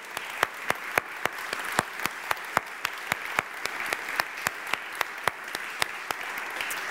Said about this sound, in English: So I don't know, why don't we just give them a round of applause?